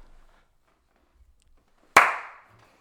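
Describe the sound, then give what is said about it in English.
After near silence, one loud, sharp hand clap rings out, its crisp snap trailing off quickly, like the opening beat of a slow clap. “You are getting a slow clap for that one.”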